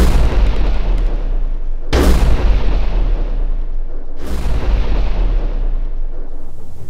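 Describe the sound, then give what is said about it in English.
Two loud cannon blasts boom a couple of seconds apart, each cracking sharply and then rolling off into a long rumble, all over a constant low roar. “Prepare the next four cannons.”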